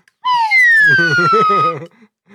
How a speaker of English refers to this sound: but for now, we love slide whistle.